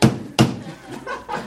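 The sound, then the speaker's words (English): A plastic hammer bangs down twice like a gavel, two sharp hollow thunks about a third of a second apart, followed by a brief stretch of quieter, indistinct sound. “I want everybody to know at home that he brought a hammer, but a plastic hammer.”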